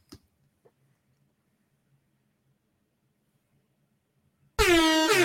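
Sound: air horn sound effect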